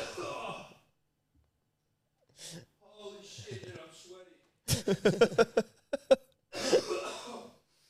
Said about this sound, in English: Coughs are contagious, like yawns.